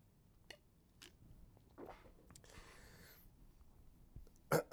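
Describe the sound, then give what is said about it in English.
Quiet sipping of water: a soft slurp and a few small swallowing clicks, then a couple of sharper, louder knocks at the end, with no one talking. “So we give them a little tip of the hat. Sip of water.”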